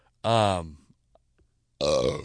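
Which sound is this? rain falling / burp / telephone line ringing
burp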